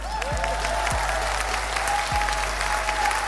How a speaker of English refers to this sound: Round of applause.